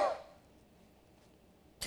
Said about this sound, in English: Coughing up a loogie over there. Oh. You need a lozenge?